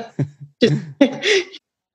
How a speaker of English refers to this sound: Oh, sorry if my dog's snoring. She's quite loud.